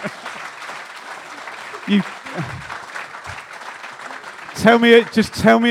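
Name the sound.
round of applause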